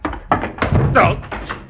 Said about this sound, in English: There is a chair nearby. I know. I just fell over it.